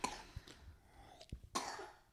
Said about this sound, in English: Cover your mouth when you cough, baby.